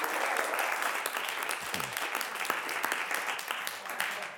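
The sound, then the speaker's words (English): A crowd applauds a pastor steadily for several seconds, a dense wash of clapping with a few sharper claps standing out, holding at an even, fairly strong level throughout. “And let's give him a big round of applause for everything that he's doing.”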